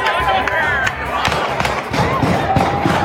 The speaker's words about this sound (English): Graduation day shooting. Chilling video as gunfire erupts moments after a high school ceremony in Virginia.